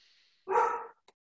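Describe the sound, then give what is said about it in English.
A single loud dog bark in a house, lasting about half a second, followed by a faint short click, with a soft high hiss in the background before it. “I think your dog has an input too.”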